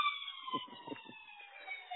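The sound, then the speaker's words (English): A fire engine siren wails steadily, its high, reedy tone sliding gradually lower in pitch as it passes, with a few low rumbling bursts underneath. “Oh, there's the Daily Fireman.”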